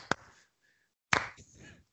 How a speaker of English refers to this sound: And I want to give a shout-out to the Miami Heat, who traded Tyler Johnson and Wayne Ellington for Ryan Anderson. Salary for salary. They got some salary relief. So, slow clap for the Miami Heat.